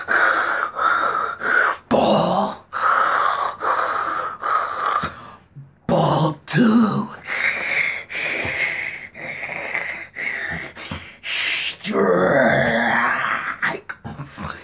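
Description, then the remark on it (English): A voice imitates the heavy, wheezy, out-of-breath panting of out-of-shape Major League Baseball umpires: loud gasps and snorting breaths in a steady run with brief pauses, ending with a few words spoken. “Them and their fat cat union with their fat old umpires sitting all fat and sassy, all out of shape, breathing all heavy.”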